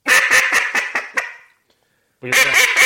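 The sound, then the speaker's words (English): A duck call blown in a middle-hen cadence: about seven loud, raspy quacks in a steady descending run, a brief pause, then another strong burst of calling. No voices. “So you are doing a cadence of what I would call middle hens.”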